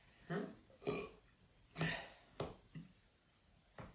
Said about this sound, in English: Oh, I like a big burp.